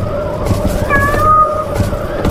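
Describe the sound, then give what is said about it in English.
A single drawn-out, wavering meow from a small black house cat, about three-quarters of a second long, rising out of a constant low rumble of wind noise. No one speaks. “It sounded like a friggin' house cat.”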